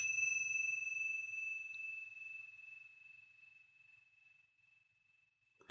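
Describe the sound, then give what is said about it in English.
A single meditation bell is struck once to mark the start of a meditation practice, its clear, high tone ringing out and slowly fading over several seconds in an otherwise quiet space. “So I'll chime these meditation bells just to mark the start of the practice.”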